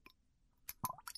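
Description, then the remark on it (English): A few quick, soft drips of flavored liquid squeezed from an eyedropper for a taste test, quiet, with small wet plops in an uneven cluster and no voices. “We got another taste from this eyedropper.”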